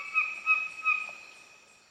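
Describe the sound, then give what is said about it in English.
A songbird calls with three quick, slightly harsh notes over a sustained whistling tone, then the sound gradually fades out. Moderately loud, with no voices. “just slowly doing these notes, these little trills and grace notes and chords, and then every once in a while it'll throw in this weird, odd squawk or ugly noise just so we know it's actually a bird.”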